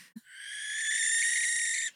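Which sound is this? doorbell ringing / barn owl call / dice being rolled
barn owl call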